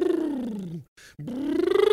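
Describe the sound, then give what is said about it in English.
A voice doing a buzzing motorboat lip trill to warm up the voice, sliding down in pitch, breaking off for a breathy moment, then gliding back up with a steady fluttering buzz. “Do you do the motorboat thing too?”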